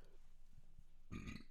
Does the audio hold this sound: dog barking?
no